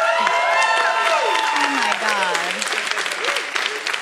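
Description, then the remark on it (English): A crowd applauds loudly and steadily, cued by an applause sign, a dense crackle of many hands clapping at once, with whoops and cheering voices rising over it for about four seconds. “Thank you for looking at the applause sign.”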